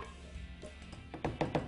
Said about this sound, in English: I'm going to get those nice pieces of shrimp in there. We might be able to get this whole batch in this blender, and I think we will.